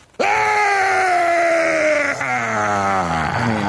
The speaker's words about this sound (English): Boy, you talk about a Dean scream. That way worse, yeah. That Jones insanity is, wow, that is something else. Unbelievable.